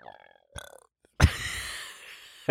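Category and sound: human body sound, burp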